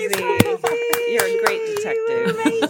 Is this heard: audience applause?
yes